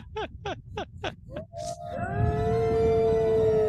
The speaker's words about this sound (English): There's wolves around us and ravens overhead.